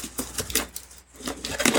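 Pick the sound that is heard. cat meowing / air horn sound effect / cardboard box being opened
cardboard box being opened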